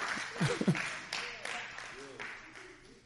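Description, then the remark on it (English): A church audience claps together during a sermon on prayer, after the preacher invites them to clap, in a dense, sustained wash of applause, with a few voices calling out over it before the clapping gradually thins. “You can clap to that.”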